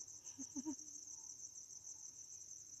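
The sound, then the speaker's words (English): Crickets chirp in a steady, high continuous trill that fills the whole stretch, with a few soft low thumps near the start and no voices. “What, don't you like the crickets?”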